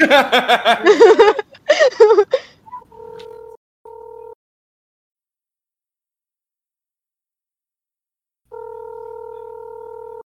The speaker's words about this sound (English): I want to hear that phone ring.